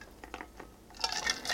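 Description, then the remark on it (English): Someone drinks water: a few light clinks and taps of a cup or bottle being handled, then a soft, breathy sip. The sounds are quiet, with no talking. “Sorry, water break here.”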